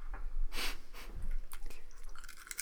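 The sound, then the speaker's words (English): Someone crunching potato chips, with a run of irregular, crackly bites and rustles over nearly three seconds, fairly quiet, along with soft breathing and no talking. “Smug chip chewing.”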